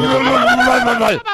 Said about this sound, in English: Yeah. God bless you. How does a sneeze get thrown into the noise maker?